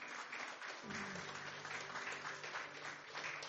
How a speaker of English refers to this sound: God is so good. Give Him a round of applause, church.